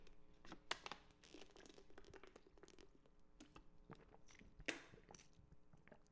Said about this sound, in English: Let me get a sip of water while I mentally prepare for this.